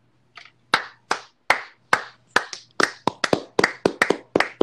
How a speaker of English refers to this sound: I can tell that's a Jonah clap.